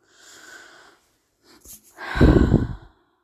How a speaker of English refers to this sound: Sorry for all the like breathing and little bits of silence.